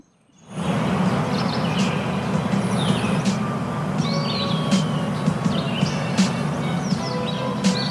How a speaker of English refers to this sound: Did you not hear all those birds? Look, I want my garden back. I heard the birds.